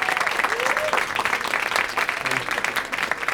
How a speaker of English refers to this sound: Ross and Cody, please come on stage and please give them a round of applause